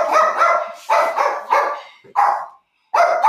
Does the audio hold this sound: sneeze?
no